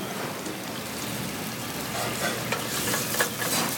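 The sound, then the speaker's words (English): Butter sauce, made to order with fresh sage, sizzles steadily in a pan, a dense crackling hiss spread across the highs, with a few sharper pops and faint stirring scrapes near the end. “So we make a butter sauce in the pan to order.”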